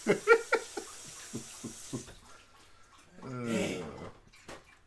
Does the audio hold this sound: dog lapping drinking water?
yes